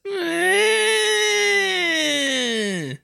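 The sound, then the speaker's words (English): A voice imitates a nerd screech, one sustained, high-pitched screech lasting about three seconds, holding a strained whiny tone before sliding down in pitch and cutting off abruptly. “could you give me a nerd screech?”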